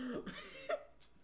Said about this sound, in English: Oh, man. I think it's coronavirus. He just coughed.